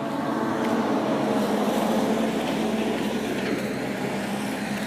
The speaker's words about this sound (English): Truck passing.